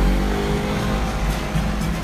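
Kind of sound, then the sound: vehicle, car engine revving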